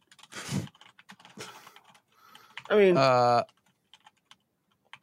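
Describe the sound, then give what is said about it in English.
Irregular clicking and clattering of keys on a computer keyboard as someone types an email, with a few busy bursts and scattered taps, briefly interrupted by a short spoken phrase midway. “No, we're just going to end the podcast by me, you know, just typing.”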